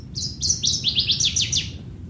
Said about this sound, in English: And then I heard northern water thrush.